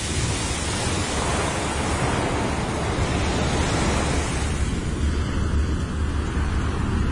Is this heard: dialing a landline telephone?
no